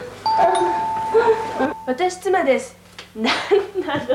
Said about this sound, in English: Doorbell rings. Who is it?